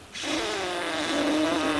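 A driver blows steadily into a police officer's breathalyzer during a breath test, producing a continuous breathy rush with a faint buzzing tone that holds evenly for nearly two seconds, with no talking.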